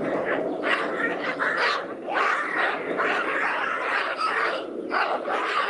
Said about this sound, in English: a bunch of baboons, ladies and gentlemen. Screaming. Baboons. Chasing one another. That's what it sounds like when that's happening, ladies and gentlemen.